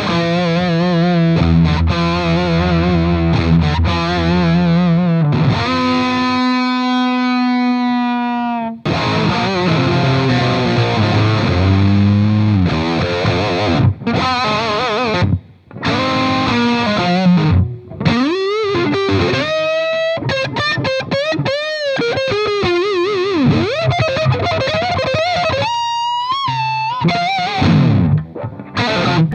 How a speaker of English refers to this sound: But this guitar barks, and I'm using it for, it's got a really clear tone to it, so I'm using it for some cleaner stuff, too.